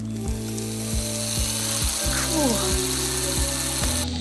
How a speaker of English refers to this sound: the children's book and adapted motion picture Matilda, the eponymous character's father brags to the family that he rolls back odometers using a power drill. Two-directional drill. You run it backwards, the numbers go down.